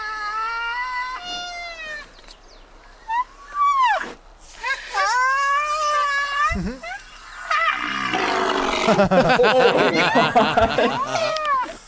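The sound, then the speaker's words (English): Baby rhinos in a video let out a run of loud, high-pitched whining squeals that rise and fall, one after another, with a noisier, scuffling stretch and possible voices toward the end. “Dude, rhinos are fucking crazy.”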